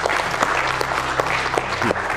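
Steady audience applause, a dense wash of many hands clapping at an even loudness for a couple of seconds, with a few faint murmurs mixed in.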